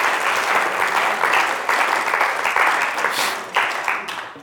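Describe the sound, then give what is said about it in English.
A crowd of people claps steadily for several seconds for the Lord, a dense, sustained wash of applause that swells slightly near the end and starts to taper off as it fades. “Let's give the Lord another big clap.”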